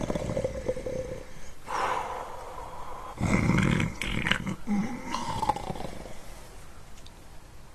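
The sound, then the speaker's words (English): Loud snoring up close: a series of rough, rattling inhales and snorts, each a few seconds apart, with breathy exhales between them and no talking. “Soon he was fast asleep and snoring loudly.”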